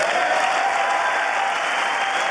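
Democrats in the House chamber applaud President Biden's State of the Union address, a dense steady wash of clapping that stays loud and even throughout, with no voices standing out.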